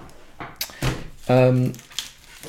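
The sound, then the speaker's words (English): A desk drawer rattles open and slides shut, a few sharp knocks and a brief squealing scrape in the middle, with soft handling noises around it. “But I'm going to put it in my desk drawer.”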